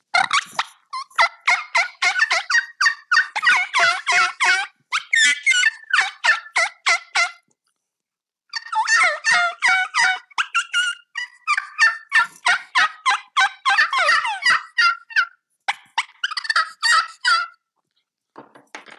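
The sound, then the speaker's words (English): Turkey calls made on a mouth call and a slate while calling in turkeys: two long runs of rapid, raspy yelps and clucks, loud, separated by a brief pause, with no talking. “And so I do use the combination of mouth call and slate with when I'm calling in turkeys, and I can just give you a little scenario of what that would sound like.”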